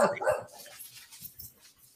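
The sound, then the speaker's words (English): A pet dog indoors barks loudly twice in quick succession near the start, reacting to a dog outside, followed by quieter, scattered yips and muffled sounds fading into the background. “Must be a dog outside. My dog's going crazy.”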